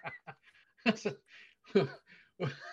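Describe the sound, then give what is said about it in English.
A dog pants and whimpers: quick breathy huffs broken by a few short, strained whining bursts, fairly soft and irregular over a couple of seconds. “And Ashton now has a visitor, a surprise guest.”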